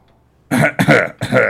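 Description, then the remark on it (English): A voice imitates wet, rasping coughing of dying ghouls coughing up blood: three harsh, gurgling bursts in quick succession after a brief quiet moment, loud, like a creature hacking up fluid. “Dying ghouls coughing up more blood.”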